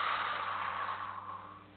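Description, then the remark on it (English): A slow, steady exhale during a guided breathing exercise: a soft, airy hiss that holds for under two seconds and gradually fades, with no talking. “Now exhale.”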